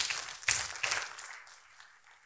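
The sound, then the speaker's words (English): A crowd claps in a dense, scattered patter with a couple of sharper swells early on, then the applause thins and fades away over the last second or so. “Yeah, you can clap.”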